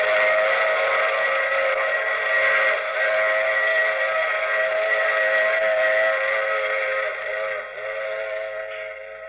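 A steam train's whistle blows in one long, loud, sustained chord, steady for several seconds with rumbling train noise beneath it, then tapering slightly near the end.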